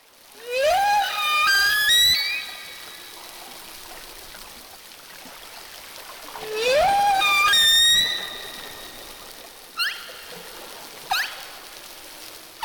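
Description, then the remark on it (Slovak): Whale song with two long, rising whistle-like calls rich in overtones, followed by two short, sharp upward chirps, over a faint watery hiss with no voices. “A potom v tretej verzii sú zapískania už len dve a namiesto toho završenia sú tam taký iný typ piskotu.”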